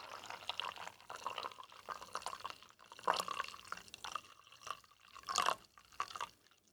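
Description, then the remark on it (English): Hot water pours steadily into a cup over spooned instant coffee granules for several seconds, a splashing liquid rush with a few brighter gurgles and drips as the flow shifts. No one speaks. “Pour some hot water over the top.”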